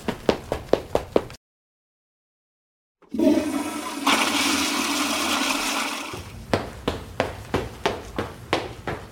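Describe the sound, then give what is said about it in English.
A toilet flushes with a loud rushing roar lasting about three seconds, preceded by a brief silence and framed on both sides by a steady run of quick, regular clicks. “Wait, excuse me, I have to pee. I'll be right back.”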